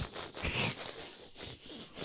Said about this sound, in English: Okay, all right, here we go. And now I'll just zip you up from the inside like a suitcase. Zip.